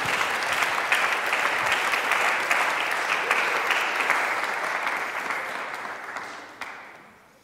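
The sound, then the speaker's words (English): An audience claps in a sustained round of applause for two guest speakers coming up to answer questions, a dense, steady patter of many hands that gradually fades toward the end, with no one speaking over it. “So can you give them a round of applause?”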